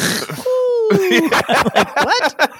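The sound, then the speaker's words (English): A voice mimics snoring with rough, throaty hawking and rasping, broken by a falling hoot-like whistle, then a burst of quick gravelly snorts. Fairly loud, with no clear words. “I sound like an owl trying to hawk a loogie.”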